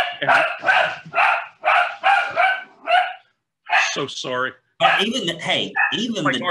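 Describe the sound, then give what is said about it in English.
A dog barks about six times in a quick, steady series, loud, then stops as a man speaks briefly and other voices continue. “Even the damn dog's mad about it.”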